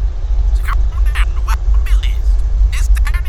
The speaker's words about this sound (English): The car drives on, taking an on-ramp onto a freeway. As it does, a radio DJ's voice can be heard on a passing truck's radio.